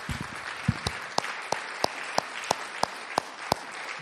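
A church audience gives God a strong round of applause at the preacher's call. A dense wash of clapping, punctuated by sharp, regular louder claps roughly every third of a second, steady in volume throughout.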